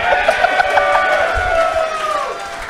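A crowd applauds steadily for a few seconds, a dense crackle of clapping mixed with rising and falling cheers and whoops, loud and continuous throughout.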